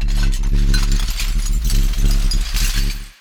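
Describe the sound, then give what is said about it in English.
The Windsor Hum, a low hum of unknown source heard in Windsor, Ontario and Michigan, drones loudly and steadily with layered low tones, while a busy metallic rattling and clinking chatters over it before the sound cuts off abruptly. “It's known as the Windsor Hum.”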